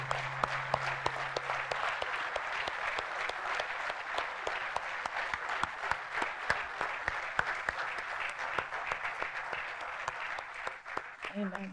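An audience rises and applauds steadily, many hands clapping in a dense, continuous burst that holds at a fairly even level throughout, sounding like a room full of people.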